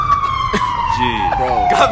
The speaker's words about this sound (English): We got 3 minutes of sirens. Real shit.